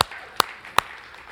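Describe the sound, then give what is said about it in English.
Audience clapping in a steady beat: three crisp, sharp claps about four tenths of a second apart, with no voices over them and only a faint background hum between. “Somebody clap to that.”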